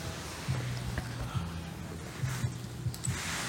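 A boat passes in Florida: a low, steady motorboat engine drone hums in the background, with a faint wash of ambient noise and no voices.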